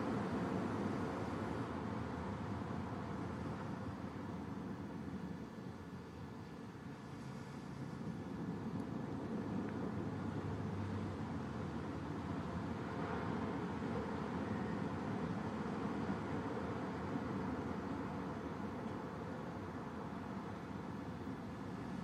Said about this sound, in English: Okay. I hear rain,